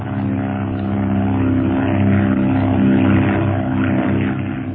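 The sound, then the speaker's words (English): A propeller plane's engine drones loud and steady, a dense harmonic hum that swells slightly as it powers up while the aircraft climbs again through a cloud. No voices, just continuous engine noise throughout. “We're in a cloud. I'm going to climb again.”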